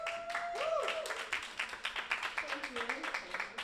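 A round of applause from a crowd welcoming Oz9, with dense, steady clapping throughout, joined by a few whoops and whistles rising and falling over the noise.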